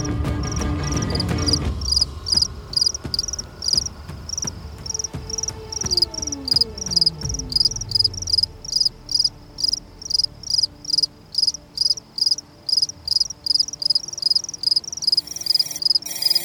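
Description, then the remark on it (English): Crickets chirp at night in a steady, rapid pulsing rhythm, loud, continuing alone after a low rumbling sound at the start fades away with a falling tone. “Cricket song swells around her, a rising effigy to the evil being invoked within the mansion's walls.”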